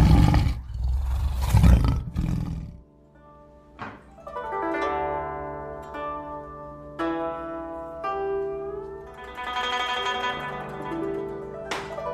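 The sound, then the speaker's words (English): A tiger named Miao lets out a loud, rumbling roar lasting a couple of seconds as it rushes out of the underbrush, then gives way to a gentle melodic passage of sustained notes. “Yet no sooner had he fastened the last strap than out rushed the tiger Miao from the underbrush and leapt upon Mr.”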